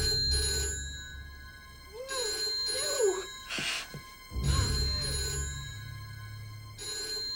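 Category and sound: household object, telephone ringing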